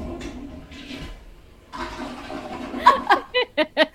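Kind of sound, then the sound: household object, toilet flushing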